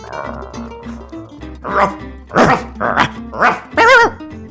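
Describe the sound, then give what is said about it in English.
A dog barks about five times in quick, irregular succession, loud, the last bark drawn out and whiny, over a soft steady musical bed. “This dog will not fetch.”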